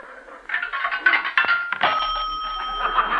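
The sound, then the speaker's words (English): A telephone call on a payphone in a private house, calling a tea room: a few sharp clicks and clunks from the handset, then a steady telephone ringing tone that continues to the end, with no voices. “A payphone in a private house.”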